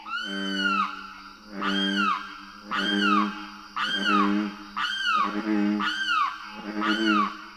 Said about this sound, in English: A loud chorus of green tree frogs and booming bullfrogs is interrupted by the insistent calls of a limpkin. A tall, wading bird whose curved bill is well-suited to its diet of apple snails, and whose unearthly screams evoke the wildness of its home.